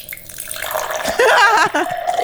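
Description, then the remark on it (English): A drink is poured steadily into a glass for a couple of seconds with a gurgling, splashing sound that climbs slightly in pitch, fairly loud, with no talking over it. “Yo, pour a drink.”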